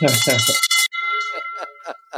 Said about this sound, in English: First deal, victory first deal. Bell. Here we go.